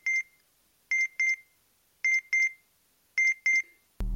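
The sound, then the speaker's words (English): An Earthbound communicator's notification alert, which signals any usage of the word Excelsior, beeps in short, high electronic tones, sounding in quick pairs about once a second, clear, then cut off by a sudden loud burst of noise. “That's a notification from my Earthbound communicator. It alerts me of any usage of the word Excelsior.”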